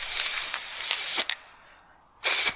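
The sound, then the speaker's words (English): An aerosol can of gold spray paint hisses in a long, steady burst for about a second as it sprays a person's leg, cuts off with a brief pause, then sprays again in a shorter burst, loud with no talking. “Why did I cover my mouth if you were spraying my leg?”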